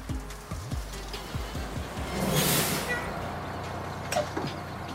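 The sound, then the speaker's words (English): A bus idles with a low rumble, then a loud hissing burst of air brakes is released midway, followed by clunks of the bus doors operating. No one speaks. “Is this the bus that takes you to the convent of las Hermanas de la Santa Misericordia de Jesucristo Nuestro Señor y Esperanza Eterna Santificado sea su...”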